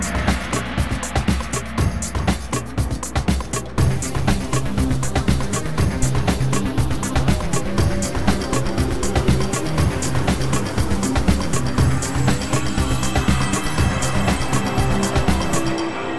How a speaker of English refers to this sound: So here we are, race day, in the car